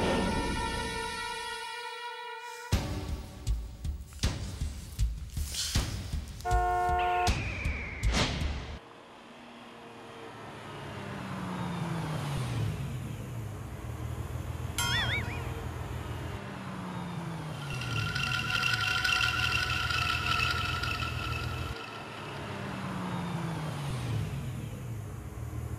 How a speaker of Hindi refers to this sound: इस वक्त सोसाइटी में गाड़ी कौन आया? हेडलाइट चालू है, गाड़ी में कौन है मालूम नहीं पड़ रहा है।